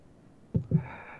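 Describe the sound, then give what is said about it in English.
A pet named Apollo coughs up something with two quick, low, throaty hacks in close succession, followed by a faint lingering rasp; no one speaks. “Apollo is coughing up a decent...”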